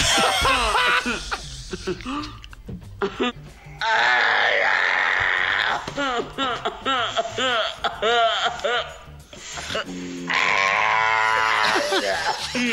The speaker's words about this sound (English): It's a slowed down. It's an actual baby, infant. Right? Yeah, it's a slowed down crying infant. That's why we call it slow baby.